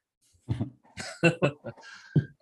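human body sound, cough

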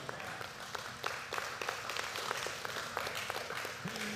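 crowd, weak

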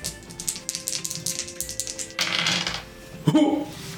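household object, two dice being rolled

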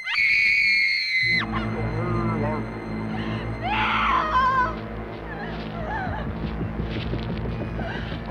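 human body sound, woman screaming

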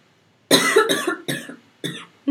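human body sound, coughing

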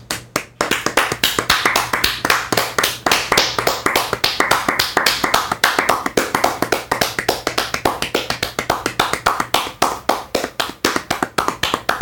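crowd, applause

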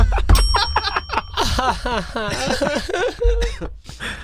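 sound effect, bell rung

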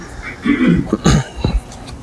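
human body sound, cough

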